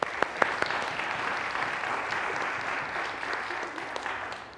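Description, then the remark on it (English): A church audience bursts into sustained applause for a group of people, dense clapping holding steady for several seconds with a few sharper claps standing out at the start, then slowly thinning as it fades. “So a round of applause for you.”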